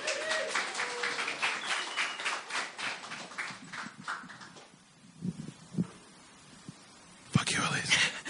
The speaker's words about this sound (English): Shall we give him a round of applause?